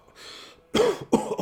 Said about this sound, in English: He takes a deep draw and passes it to Jones, and similarly takes a hit before bursting into a fit of coughing.